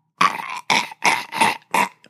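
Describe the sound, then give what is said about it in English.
A voice imitates a tongueless zombie groaning, five strained, guttural bursts in an uneven rhythm, each loud and rasping with a steady nasal pitch, separated by short silent gaps. “And all you would hear is a.”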